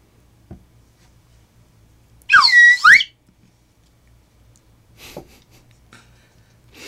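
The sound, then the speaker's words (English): A loud slide whistle plays a quick riff, its pitch swooping down and then back up in under a second, set against an otherwise quiet background with a few faint clicks. “I can't believe I just sort of willingly took place in a slide whistle riff.”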